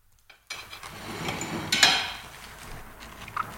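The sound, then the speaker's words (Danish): Crisp crunching of an onion being chewed, a few bright crackling bursts over a steady low rustle, with faint kitchen clatter and no talking. “Der var et løg, der knaste, mens du talte.”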